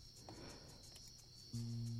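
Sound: crickets chirping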